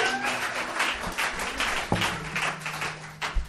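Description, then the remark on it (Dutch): An audience applauding a band: a dense, steady wash of many hands clapping that carries through the whole stretch, with a few sharper individual claps standing out and a faint low hum underneath. “Let's give the band a hand.”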